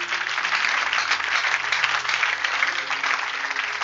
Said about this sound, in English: Are you clapping your hands for Jesus?